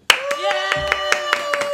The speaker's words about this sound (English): Stop applauding. The guest is clapping for herself. The guest is want to do that.